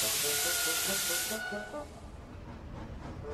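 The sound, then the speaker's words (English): A steam locomotive lets out a loud burst of hissing steam with a faint whistling tone inside it. It cuts off after about a second and a half into a quieter rumbling tail, as something snaps while its wheels spin pulling a train. “as his wheels spun, something snapped and he was covered in a great cloud of steam.”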